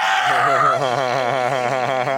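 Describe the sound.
A single loud, sustained scream held for a couple of seconds with a wavering, shaky pitch, mimicking an excited fan shriek, screamed at a phone, with no talking around it.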